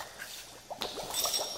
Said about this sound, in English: I hear bubbles.